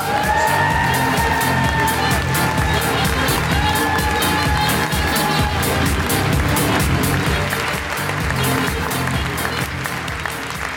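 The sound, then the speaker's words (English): An audience cheers and applauds steadily as guest Sean Binder is welcomed to the stage, dense clapping mixed with whoops and crowd noise throughout, with a few high sustained shouts rising above the steady roar. “Then please welcome to the stage the incredible Sean Binder!”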